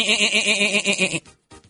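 A billy goat lets out one loud, wavering bleat lasting just over a second, nasal and trembling, then a short faint scrape of noise after it stops.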